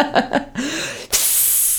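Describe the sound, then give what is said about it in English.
A couple of short vocal sounds, then a bright, steady hiss of fizzy water fizzing, loud and sustained for the last second or so. “Just take my water and drink it. It's fizzy water. I hope everyone heard that fizz.”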